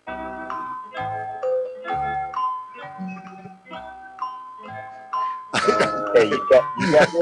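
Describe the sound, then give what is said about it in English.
The Jeopardy thinking music plays after a question is asked, a bright, steady melody of chiming notes, then voices and busy noise swell over the tune for its last couple of seconds. “Okay, so you ask the question, and then I put Jeopardy on, and then they answer.”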